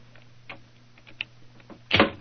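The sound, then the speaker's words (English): A skeleton key rattles and scrapes in a door lock with a few small metallic clicks, then a louder clunk as the bolt turns, over a faint steady hum. “Is the door locked? Yes, but I think the skeleton key will do the trick.”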